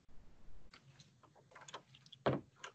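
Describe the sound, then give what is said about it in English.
Soft clicks and shuffling lead into a single solid thump of a door being shut, followed by a faint latch click. No one speaks. “You're closing the door.”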